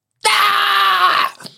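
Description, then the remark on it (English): A single loud voice lets out a sustained, strained scream for about a second, imitating an anime-style Super Saiyan power-up yell, then cuts off with a short breathy exhale. “It's Super Saiyan mode, baby!”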